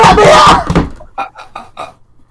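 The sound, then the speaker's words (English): Heavy, loud pounding on a locked door by someone wanting to be let out, a thick cluster of thuds followed by four quicker, lighter knocks in a steady rhythm. “Who locked the door? Let me out!”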